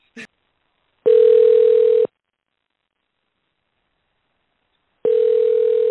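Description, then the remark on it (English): A phone line rings back on a call to the Clairview Walmart store: after a faint click, a steady electronic ring tone sounds for about a second, goes silent, then starts again, heard through the earpiece with no one talking. “I called too. I recorded my call.”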